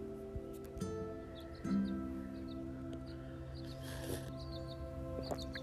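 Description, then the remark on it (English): Soft, scattered bird chirps come in short bursts beneath overhanging trees amid new greenery and blooming flowers, set against a steady low outdoor hum, with no one talking. “As the beautiful trees hang overhead, and the birds chirp, and the greenery is starting to come out, and the flowers are blooming”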